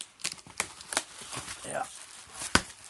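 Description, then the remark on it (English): Crackly ripping and rustling as a tear-off strip is pulled open, without scissors, on a Kickstarter reward package, a series of short irregular bursts with a sharper snap near the end. “It's got like a kind of a tear-off thing.”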